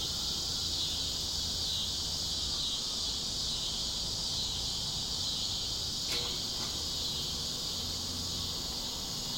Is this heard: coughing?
no